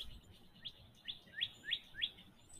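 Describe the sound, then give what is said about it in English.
A songbird, a cardinal, sings a series of about five clear, downward-slurred whistles in a quick, steady rhythm, standing out sharply over soft outdoor background noise. “Wow, that bird is really loud. I think it's the cardinal actually making that noise.”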